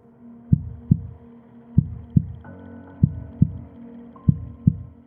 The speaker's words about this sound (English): I could hear my heart beating underneath my t-shirt.